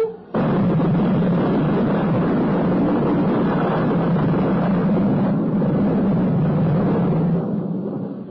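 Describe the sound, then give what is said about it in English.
Loud thunder from an electric storm, a heavy booming rumble that rolls on without a break for about eight seconds before easing slightly at the end. No voices are heard. “The thunder's coming. The loudest of all.”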